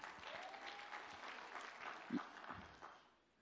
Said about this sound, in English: We had a few less claps for her, so I want you to clap again for her.